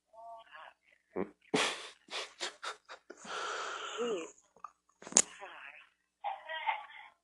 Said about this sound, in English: Oh, good, she needs a cigarette, right. Mm-hmm. Isn't that a smoker's cough?